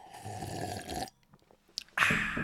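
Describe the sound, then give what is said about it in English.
Two loud, rough slurping sips of water, each about a second long, separated by a short pause with faint wet clicks and gulps. No talking. “Hang on, I got to drink some water. So, ASMR water sipping.”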